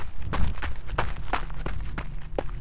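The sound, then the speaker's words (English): Quick running footsteps pound down a small path among trees and rocks: about seven heavy thuds in a fast, even rhythm with crunchy, gritty impacts and a low rumble underneath. No voices. “Without a second thought, I got to my feet and ran down the path.”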